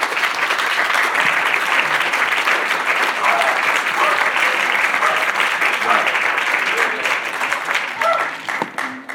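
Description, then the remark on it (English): Sustained audience applause at a debate on anarchism and libertarianism, a dense steady wash of many hands clapping at an even loudness, thinning slightly near the end as individual claps become more distinct. “All right, I hear applause from more than one species.”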